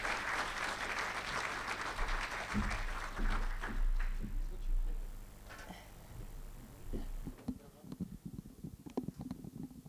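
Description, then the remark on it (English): A church audience claps warmly to welcome a speaker, a dense, steady burst that gradually thins out, with low rumbling thumps and scattered voices as the applause fades to a few final claps. “Let's give her a clap as she comes and speak about generous.”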